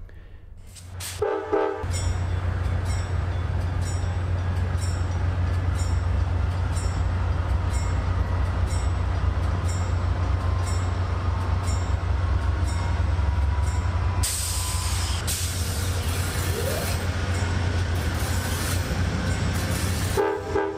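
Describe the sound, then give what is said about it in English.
Amtrak's Empire Builder diesel train pulls away from the platform at Portland Station (PDX) at 4:45 on its journey to Chicago, the diesel locomotive at the front throbbing in a steady low rumble that grows and holds, with a short horn blast near the start and rail noise building later. “It's 4:45 and bang on time the Empire Builder is pulling away from the platform here at Portland Station.”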